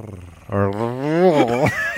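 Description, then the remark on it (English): A man attempts a rolled R, producing a buzzy, growling voiced trill that lasts a little over a second, its pitch rising slightly and then dipping before it cuts off. “I learned I don't want to hear him try to roll R's anymore.”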